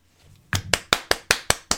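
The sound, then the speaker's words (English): A single pair of hands claps seven times in a quick, steady rhythm, close and fairly loud, after a brief quiet start with no voices. “Applause, applause, applause.”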